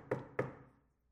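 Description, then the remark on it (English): Two quick knocks on wood in a studio, made by the speaker himself, sharp and hollow, spaced about a quarter second apart, each with a short resonant ring that fades out. No voices are heard. “Somebody at the studio door? My friends can wait. No, that was me.”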